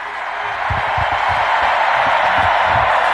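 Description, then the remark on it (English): A large crowd at Harvard screams together on a count of three for a quick photo, in one loud, sustained roar that holds steady for several seconds without fading, dense and high-pitched, with no individual voices standing out. “We're going to do a quick photo on the count of three. Scream.”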